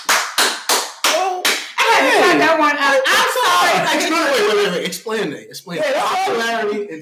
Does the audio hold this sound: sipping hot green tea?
no